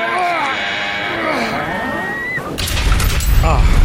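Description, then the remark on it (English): A person talks briefly after walking up from the beach, then the door of a radio studio opens with a loud, low rumbling clunk and broad rattling noise that continues to the end. “I'm open the door here.”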